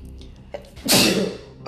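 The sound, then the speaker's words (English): A single loud sneeze bursts out after a brief sharp inhale, its noisy blast fading over about half a second, with faint room sound around it. “Bless you.”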